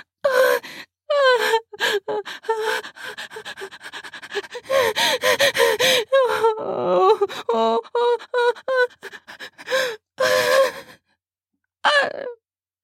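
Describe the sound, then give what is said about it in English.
A woman moans and gasps during sex in a series of breathy, rising and falling vocal bursts separated by brief pauses, with no spoken words. “I'm about to come, and I dig my nails into his biceps as I moan out.”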